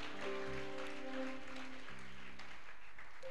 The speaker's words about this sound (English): And as you clap right now, your testimony is coming as well. Amen.